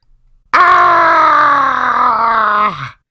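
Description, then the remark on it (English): A person lets out one long, loud, sustained scream lasting a couple of seconds, its pitch sliding downward before it cuts off abruptly. Strained, with no other sounds around it. “Sorry, I had to get that scream out.”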